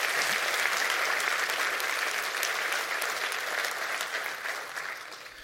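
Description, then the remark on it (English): Sustained applause from a large audience, a dense, even wash of many hands clapping at steady loudness that tapers slightly toward the end. “Clap your hands real big and say, I love you.”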